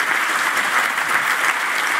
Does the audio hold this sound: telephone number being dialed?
no